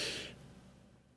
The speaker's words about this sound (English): I'm breathing because fuck you guys.